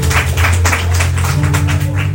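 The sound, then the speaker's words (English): An audience claps together for all the participants in a steady, dense patter of applause, loud, over a low sustained hum or tone underneath. “Let's clap for all of our participants.”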